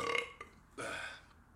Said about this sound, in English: Wait for burp. Hold on.